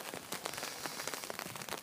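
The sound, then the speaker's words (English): Steady rain falls outside, soaking an abandoned office chair left out, a dense hiss of droplets pattering on a hard surface with scattered sharper taps, fairly soft and even throughout with no voices. “The chair, the office furniture, free chair is still here, soaking up the liquid sunshine, as I've heard the rain here gets called.”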